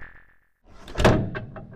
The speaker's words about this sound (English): The mummy flashes again, and the sarcophagus slams shut.